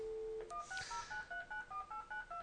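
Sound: telephone keypad dialing tones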